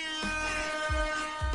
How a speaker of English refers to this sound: Damn, I lost the drum roll. Fuck it, air horn.